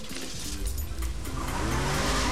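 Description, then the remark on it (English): The tires of Biff's police car skid and squeal loudly over a rough engine roar, a continuous screech that rises in pitch and intensity over a couple of seconds, with no one speaking. “Still in Biff's police car.”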